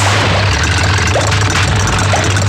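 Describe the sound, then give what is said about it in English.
The engine of a Navy Super Hornet jet fighter roars steadily and loudly throughout, a broad rushing noise over a deep, constant low hum, with no voices and no break in the sound. “Brendan Nelson demonstrates the Navy's new fleet of Super Hornet jet fighters.”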